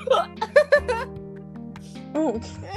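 A few sharp, squeaky hiccups, brought on by being startled, pop out, several bunched together at the start and one more after a short pause, over a steady low background hum.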